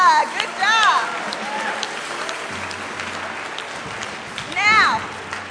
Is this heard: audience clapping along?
yes